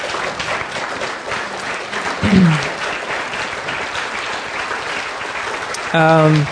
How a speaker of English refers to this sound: So, church, can we stand together? Give them a round of applause.